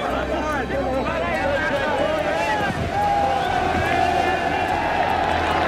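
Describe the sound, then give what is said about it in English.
A large crowd roars and cheers continuously for a new golf champion as he comes into the arena and walks onto the green, a dense wash of many voices and clapping that stays loud throughout and swells slightly partway through. “Let's wait for the cheer when he comes actually into the arena and walks onto the green.”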